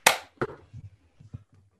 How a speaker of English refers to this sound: All right, ready? 3, 2, 1, clap.